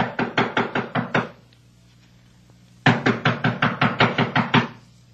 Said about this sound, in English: Well, it's like this. I've been knocking on the door, and she doesn't answer.